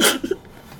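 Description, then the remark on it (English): A voice imitates a gurgling, drowning noise, like someone gurgling in their sleep while still breathing, joked to be Ted Cruz: a breathy, hissing burst followed by two quick low bubbling blips, then a faint trailing breath. No words are spoken. “I think like he a drowning noise, but still breathing.”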